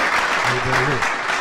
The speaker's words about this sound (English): Y'all clap it up right now. Clap it up.